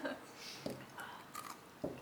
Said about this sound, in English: Chewing ice. What's up? I said, did you just chew ice? I chewed a little ice. Oh, nice. I had a little bite. A little bite of ice.